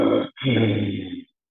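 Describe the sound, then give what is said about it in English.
A person imitates how their own croup cough used to sound: a short, harsh vocal burst followed by a longer, raspy, groaning one, loud, with no other talking. “Is it a lot of collection of mucus that is like, very difficult to cough I know up? I used to sound like...”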